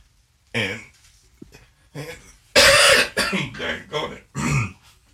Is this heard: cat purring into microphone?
no